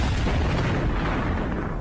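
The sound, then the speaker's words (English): An explosion sound effect played from a streamer's soundboard: a loud, sustained explosion rumbles with deep bass and crackling debris noise, filling the whole stretch without a break before slowly starting to thin out, with no voices present. “Like, I want to be able to press the explosion button. So I'll just press it now, preemptively.”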